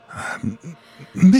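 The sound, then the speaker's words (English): A voice imitates labored breathing: a long raspy exhale, several short throaty huffs, then a louder strained, groaning breath at the end. “And you just see the anonymous door there at the end of the hall, and you can hear from behind it labored breathing.”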